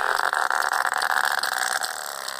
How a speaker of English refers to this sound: And that's what sperm whales sound like.